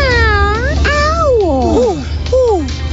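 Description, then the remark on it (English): A person imitates a cat, producing several drawn-out, wavering meows in quick succession, fairly loud over a steady low background rumble. “What about the tiny dog? Cat.”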